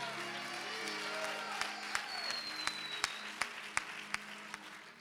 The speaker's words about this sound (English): Oh, you need to clap louder than that. Come on now.